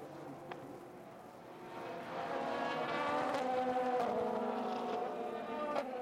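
Several GT sports race cars race past together on the track at the 2023 WeatherTech SportsCar Championship race in Indianapolis, their engines roaring, harmonic whine swelling louder midway and holding steady, with a few sharp transient clicks over the continuous high-revving drone.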